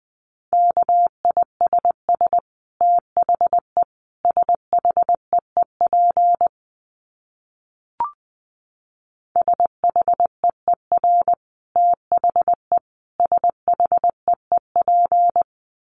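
Morse code beeps at a single steady mid-high pitch, keyed at 20 words per minute in rapid groups of short and long tones. A pause falls midway, broken by one brief blip, before the fast keying resumes.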